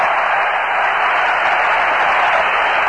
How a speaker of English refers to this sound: Randy Hundley tried to bunt his way on. Seaver came off the mound, played it back. The booing you hear is for Hundley.